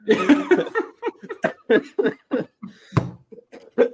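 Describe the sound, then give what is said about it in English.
A loud run of short coughing bursts in quick succession from a person who is a little under the weather in Denton, Texas, with brief pauses between them and a sharper, harsher cough near the end. “And listeners, pardon me for coughing.”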